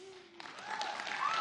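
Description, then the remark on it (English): An audience, asked in an applause poll who backs the Chiefs tonight, bursts into applause that swells over a second or so into steady, dense clapping, with a few high whoops and cheers rising above it. “So just real quick, let's just do an applause poll. Who's got the Chiefs tonight?”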